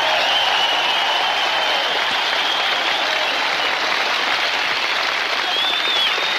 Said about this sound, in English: I announced their names, all these cats out here doing this work here, all these camera guys and all these sound guys. Let's get an extra hand for them, huh?